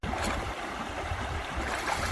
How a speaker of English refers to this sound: I am in the beautiful River Prat. Nachal Prat.